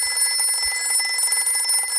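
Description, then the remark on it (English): A telephone rings with a steady, shrill electronic tone that holds unbroken for the full two seconds, fairly loud, with no voices over it. “The phone rings.”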